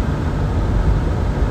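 A steady, full rushing of air from a car heater fan as the heat is turned on, loud and constant with a deep low rumble underneath, no voices.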